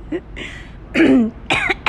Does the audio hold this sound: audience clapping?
no